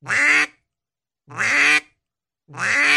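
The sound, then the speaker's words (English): Three drawn-out, nasal duck quacks in a steady rhythm, each lasting about half a second, loud. A person is imitating a hen mallard with a call, stretching each quack too long. “One of the common mistakes a lot of people make is they're making the quack too long.”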